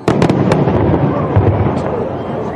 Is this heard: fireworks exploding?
yes